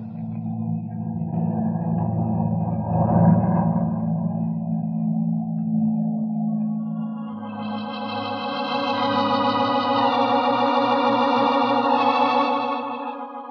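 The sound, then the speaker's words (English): An unseen airplane's engine drones steadily overhead, a low rumbling hum that gains a layered, high-pitched harmonic whine in its second half, swelling slightly louder before easing off. No one speaks. “But the expression on his face and the sound of the airplane that couldn't be seen convinced me of his sincerity.”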